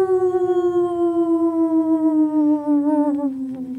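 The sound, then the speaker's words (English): A single long, loud werewolf howl, unbroken, its pitch sliding slowly downward for nearly four seconds and turning wavering near the end, with no talking over it. “So next is the werewolf.”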